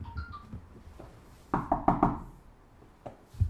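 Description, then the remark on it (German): Three quick, solid knocks on a door, fairly loud, followed by a short pause and one or two softer taps, with a faint low tone earlier in the background. “Und ich werde diese Taube nehmen und wir gehen dann zum alten Mann und wir klopfen an die Tür.”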